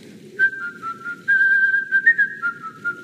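Someone whistles a short, cheerful melody up close, the clear tone stepping between notes in a few quick phrases over a faint low background rumble.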